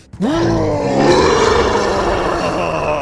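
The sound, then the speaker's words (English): A person growls out a long, loud, rising roar imitating the dragon roar of Sphinx, a little frilled lizard, as it bites at an assassin: a sustained throaty vocal bellow lasting about three seconds, with no talking. “And I'm hoping as well that roar is heard by the people outside the gates and kind of concerns them.”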